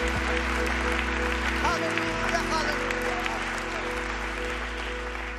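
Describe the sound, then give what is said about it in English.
A church audience claps their hands to honor their elders and the Lord, in a steady, dense wash of applause that holds at an even loudness for several seconds, with a low hum running underneath. “they're not here today, but if somebody will look up to the heavens where our dear elders are, and would you clap your hands and honor them and the Lord for the blessings that he has bestowed upon this body of believers.”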